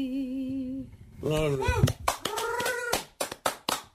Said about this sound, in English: Well, there's a round of applause